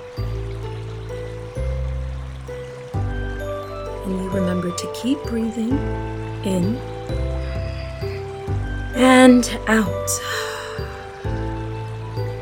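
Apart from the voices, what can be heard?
gently flowing river water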